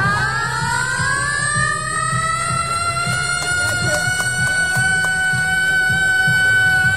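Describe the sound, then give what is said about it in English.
A man in the crowd at a Hobart Hurricanes game in Launceston mimics an emergency siren with his voice, holding a steady, rising wail for several seconds over a low, busy crowd murmur, loud. “He's doing that siren noise with his voice.”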